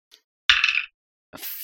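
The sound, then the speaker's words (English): Dice clatter across a hard tabletop in a short rattling burst, followed a moment later by a second brighter tumble. No one speaks. “And I guess roll one last. Okay, here we go.”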